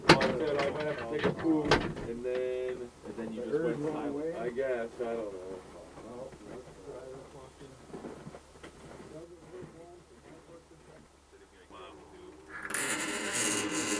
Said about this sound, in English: Yeah, we could, this fucking door, I fucked with this door.